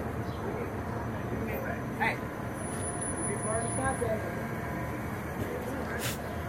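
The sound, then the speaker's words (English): A city bus rumbles along a busy street, its engine droning steadily beneath traffic noise, with a brief squeal and rising whine as it arrives. Muffled voices can be heard in the background. “Look at the bus coming on.”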